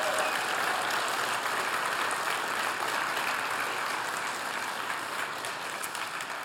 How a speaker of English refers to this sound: Would you just give a round of applause to this church for what they're doing for us?